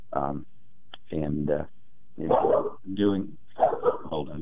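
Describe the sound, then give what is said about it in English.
A dog barks and yips in a quick run of about five sharp bursts, some higher-pitched and whiny, with brief pauses between them. “be quiet, please. My dog is also here with me.”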